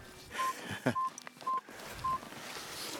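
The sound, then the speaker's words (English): A phone Aurora alert sounds from a phone in a pocket as a series of four short, steady electronic beeps at a mid pitch, spaced roughly half a second apart, over a low rustling background with a brief clatter near the start. “So guess what's just beeped in my pocket? I've just felt it. My Aurora alert.”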